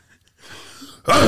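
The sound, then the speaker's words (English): A breathy intake builds for a moment, then a sudden loud, harsh cough-like burst with a throaty rasp erupts and sustains to the end. “I was just coughing.”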